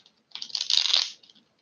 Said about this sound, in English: I have the Rider-Waite Tarot deck. Hold on 1 second as I shuffle.